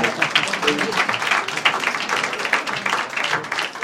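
A crowd applauds steadily, a dense patter of many hands clapping at a fairly loud, even level throughout with no voices standing out.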